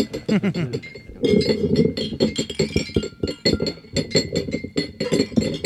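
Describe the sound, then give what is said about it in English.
Glasses clinking repeatedly and rapidly, many sharp overlapping chimes building into a loud, continuous clatter as people tap glasses during a toast speech, with faint crowd murmur beneath. “Like, every time you calm us down, but then when you go back to your speech, I pictured the clinking gets worse every time.”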